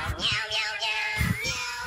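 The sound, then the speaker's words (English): Electronic cat meows from a novelty singing shirt, set off by pressure on its chest during a hug, a steady run of high, whiny, overlapping mews lasting about two seconds, fairly loud with no talking. “You started and meowing. Their breasts turned my cats on.”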